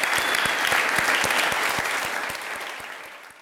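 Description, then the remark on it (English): An audience at a Commonwealth Club program applauds Tristan Walker steadily, a dense wash of many hands clapping with scattered sharper claps, loud throughout and gradually tapering off toward the end. “And I just want to close with another big round of applause for Tristan Walker.”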